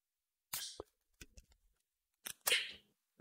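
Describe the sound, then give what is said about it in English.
A can of Juice Z, a 5% New England IPA, cracks open: a sharp snap with a brief hiss, a few small metallic clicks, then a second louder pop followed by a short fizzing rush. No one talks. “So anyway, I'm going to go ahead and crack that one open here.”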